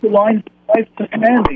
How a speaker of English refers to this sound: Can you shut the radio in the background? There's like a couple of seconds delay.